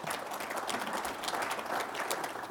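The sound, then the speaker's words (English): A crowd applauds steadily, many hands clapping in a dense, continuous patter that holds an even level for a few seconds, with no voices standing out. “Yes, please, round of applause.”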